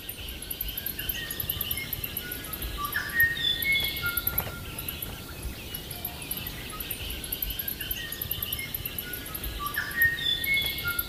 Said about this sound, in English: With all the birds in the background, it could be tricky to hear it, but if you listen carefully, you will notice that high-pitched squeak.